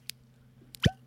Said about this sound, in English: I'm going to pour a little sample for everybody.